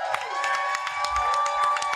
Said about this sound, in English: Thank you to everyone who came to the Quiz Box tonight. A round of applause for your entire panel this evening.